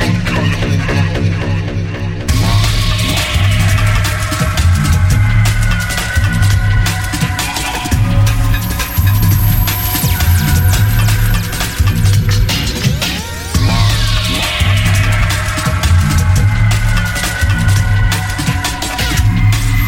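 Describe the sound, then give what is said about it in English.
A loud electronic dance track played from a vinyl record plays on its own, driven by a steady thumping bass beat under dense layered synths with rising sweeps, and no one talks over it. “you buy your vinyl, you've got to get this … on Echo Beats”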